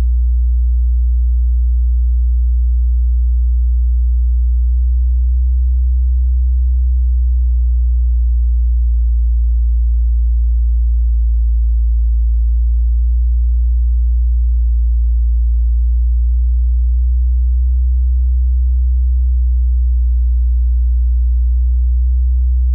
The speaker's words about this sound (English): But the tape had this hum on it. And the hum was fluctuating too. You might not hear this so well if you're in your car, especially if you're on the highway, but I'm about to vary the frequency a little bit.